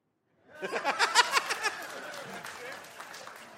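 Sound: brief audience clapping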